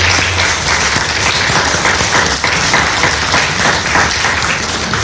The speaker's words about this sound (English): As we round out the month, can we just give them a quick round of applause? Thank you.